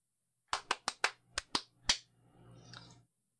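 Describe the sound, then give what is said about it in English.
Seven sharp hand claps in a quick, slightly uneven burst, loud and crisp with no talking, then a faint stretch of soft shuffling noise. “I'm going to clap again.”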